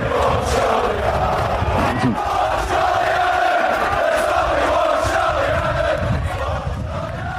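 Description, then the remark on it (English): A large football crowd chants a player's name in unison, a dense roar of many voices holding a steady sung tone that swells and repeats without pause for several seconds. “Listen, we all like to be praised, and you know, when they sing your name, it's an amazing feeling.”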